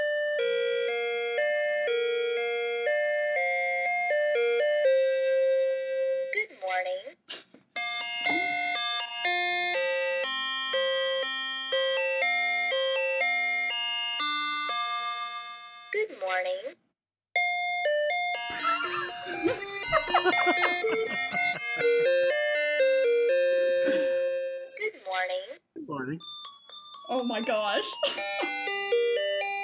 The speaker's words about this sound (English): you mentioned in last week's episode that you own a bootleg Sailor Moon clock